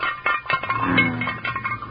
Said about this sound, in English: Two little old chicken legs. Doggone it, but it's sure good at that. Just one bite and that one's gone. And another bite and that one's gone too. Bones sure sound hollow in that frying pan.